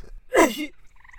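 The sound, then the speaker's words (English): A single loud sneeze bursts out with a strange croaking, gurgling quality that slides downward in pitch, followed by faint, soft tonal beeps in the background. “Bless you! Bless you.”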